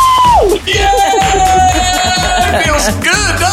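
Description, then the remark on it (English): A loud, high-pitched scream of joy that swoops down, then holds a long sustained excited shriek, ending in wavering squeals over a rhythmic background bed. “I can't believe it's happening. I'm going to scream.”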